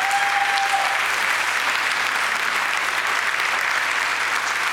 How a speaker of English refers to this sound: They have taken care of business, so I honor them. Thank you. Give them a little round of applause.